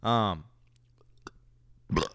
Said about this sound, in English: Ugh. That's my chronic burping problem, everybody. If you have an issue with that, I apologize.